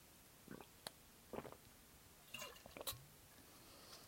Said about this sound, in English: Taking a drink of water.